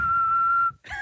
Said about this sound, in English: God, how does whistling work? Oh, like this.